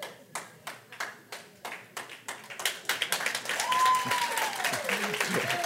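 Audience applause starts as slow, evenly spaced claps, then quickens and thickens into a full round of clapping with a few cheers or whoops rising over it.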